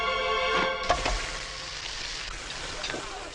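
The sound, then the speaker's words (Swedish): A tongue fries in a hot frying pan, a steady crackling hiss dotted with sharp pops and spits, fairly loud throughout. “Och spottar ut den i stekpannan. Ja, precis. Så tungan börjar stekas.”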